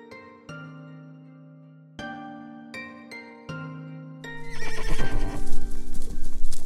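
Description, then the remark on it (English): A few ringing, plucked-sounding tones open, then loud hoofbeats clip-clop in a quick rhythm alongside a horse's neigh, with no voices present. “Powerful, determined, and heroic, she will win any horse race in the land.”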